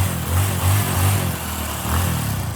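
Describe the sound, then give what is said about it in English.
A motorcycle engine revs up and down in a low, throaty, loud rumble, with rhythmic surges of throttle over a couple of seconds and no voices. “We're not taking a motorcycle.”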